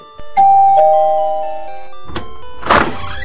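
A doorbell at Blue's house chimes a two-note ding-dong, a higher tone followed by a lower one, ringing out and slowly fading, before a brief burst of rustling noise near the end.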